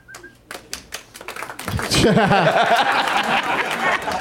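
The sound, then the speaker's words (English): A smattering of applause for an obviously correct answer, Knocked Up: a few scattered handclaps pop sparsely at first, then the sound swells into a louder, denser wash of clapping mixed with laughter and lively voices. “Smattering. That's the applause you get when everybody's just celebrating a crazily obvious answer.”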